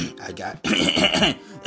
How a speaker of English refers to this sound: I got to clear my throat, but then I got shit to do, so I can't just continuously keep recording segments, especially long segments, you know, over and over again.